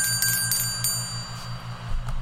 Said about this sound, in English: Every time we talk about a book and successfully feel like it has joined the club, we're going to ring the book bell. So let's ring that bell. Here we go.